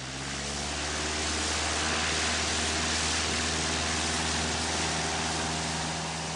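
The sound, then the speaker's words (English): A small plane's engine drones steadily as the plane lands on an island, a low harmonic hum layered under a broad, rushing hiss that holds a constant loudness throughout, with no voices. “As the plane lands, I can see a row of 10 cars, empty, abandoned, all waiting for their owners to come back from the mainland.”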